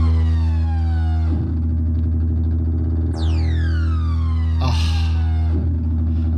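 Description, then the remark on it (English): An EMS AKS analog synthesizer, played by Dave Spears of GForce Software, plays a loud, buzzy sustained drone while bright tones repeatedly swoop downward in pitch, like siren sweeps, with a hissy burst near the end and no talking. “An AKS, an EMS AKS.”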